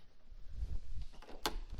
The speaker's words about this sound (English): I'm going to close this door here so that we don't have the hallway noise.